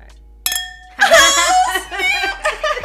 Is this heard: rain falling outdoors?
no